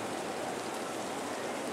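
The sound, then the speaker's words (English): Light rain patters steadily at Evermore Field during a rain delay, with the grounds crew's tarp brought out, a soft, even hiss of drops falling on surfaces with no break or change in intensity, fairly quiet with no voices. “A light rain is falling here at Evermore Field, and the grounds crew has brought out the tarp.”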